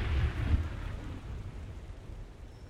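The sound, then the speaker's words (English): A deep rumble of thunder rolls in loudly at the start and slowly fades, with a steady hiss of rain and wind continuing underneath throughout. “And then they tried to get some sleep with the storm all around them.”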